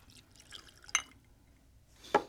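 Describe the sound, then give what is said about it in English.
Whiskey being poured into a glass for tasting, heard as a faint trickle broken by two sharp, ringing drips or clinks about a second apart. Quiet, with no one talking. “We're going to go ahead and pour this up and see what happens.”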